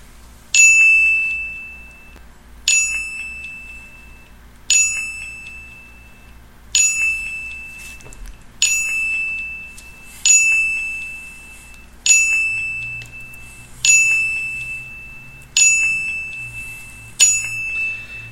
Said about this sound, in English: We're going to try to play 10 dings. We don't have a real bell, ring bell, so we're going to do at least 10, try to do as many dings as we can.